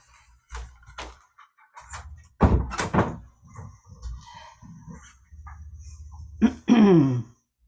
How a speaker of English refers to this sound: Excuse me, I'm going to close my door.